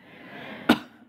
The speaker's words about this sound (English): Sorry. It's really bad manners to cough into a mic, and so I might do that more than I have a little bit of allergy.